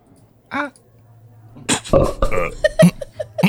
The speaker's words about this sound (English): 2, was that a belch?